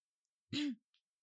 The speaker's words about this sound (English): I just had to cough a little bit.